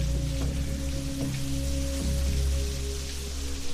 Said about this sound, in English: Whenever it rains, you know something's about to happen.